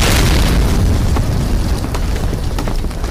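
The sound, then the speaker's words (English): A loud explosion sound effect for a character's armor exploding off him bursts in with a deep, rumbling boom, then rolls on as a sustained roar with scattered crackles and pops over about three seconds. “Instantly, his armor explodes off of him.”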